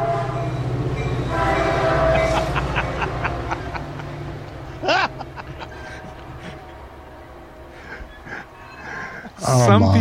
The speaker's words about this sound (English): Oh, here comes the train.